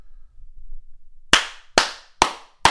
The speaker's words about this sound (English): Well, I mean, if you ever want to hear my clap in person, just let me know. That was a quiet one, so. Give me a loud clap.